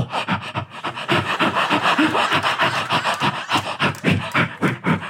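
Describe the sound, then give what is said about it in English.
A voice imitates heavy, rhythmic panting breaths, fairly loud, mimicking Rolf's catchphrase, which sounded like heavy breathing down a telephone, puffing in and out steadily for several seconds without any words. “His catchphrase sounded like heavy breathing down a telephone.”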